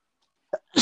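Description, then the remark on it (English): A single loud sneeze from a man: a brief sharp intake of breath followed by an explosive, hissing burst that is cut off at the end. No one is speaking. “Bless you, sir.”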